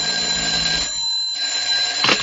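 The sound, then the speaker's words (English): A telephone bell rings loudly in two bursts separated by a short pause, a shrill, high metallic trill with no voices over it, at a man's home as he puts on his hat and coat. “I was just putting on my hat and coat when the phone rang.”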